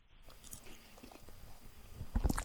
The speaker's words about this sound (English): I'm swallowing some food here right now. Sorry.